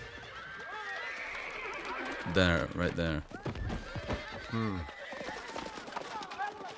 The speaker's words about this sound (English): All of the horses are reacting at once. That was so difficult, as far as I remember.